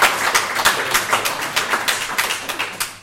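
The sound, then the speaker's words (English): An audience applauds a woman after she shared her story: a steady stream of crisp, overlapping claps with a fairly even rhythm, moderately loud and without any talking, lasting about three seconds. “Can everybody just give her a round of applause again?”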